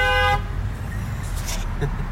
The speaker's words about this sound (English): I honked at her.